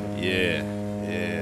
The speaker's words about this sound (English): Put the 49er foghorn on that too.